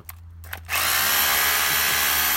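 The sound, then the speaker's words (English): After a brief quiet moment with a couple of small knocks, a power drill whirs to life and runs loudly and steadily with a high, buzzing whine. “I don't think you're allowed to use power tools after.”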